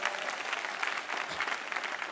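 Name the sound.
audience clapping hands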